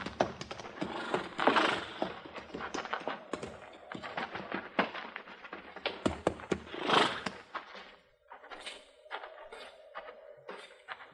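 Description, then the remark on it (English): Irregular hooves clop and thump on a hard floor as horses are put into a barn and tied in stalls, with a couple of loud whinnying, snorting bursts rising over the steps. “Put our horses in the barn here”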